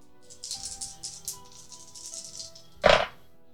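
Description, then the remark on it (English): Dice rattle and clatter steadily for a couple of seconds in an athletics roll during a game, ending in one sharp, louder knock as they land, showing a 6. No one speaks. “If you want to do an athletics roll, you can take a point from the gym card to roll an additional dice.”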